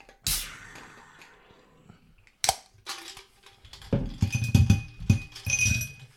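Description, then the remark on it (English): Homemade ice cubes, made in a fridge, clink into a cup for nitro cold brew: a sharp clatter, a second knock a couple of seconds later, then a longer rattling burst of cubes tumbling and settling with bright ringing tones. “Definitely put the ice in your cup.”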